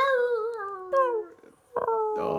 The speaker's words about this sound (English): The dog started by initiating a bark at the mom, and the mom was not having it.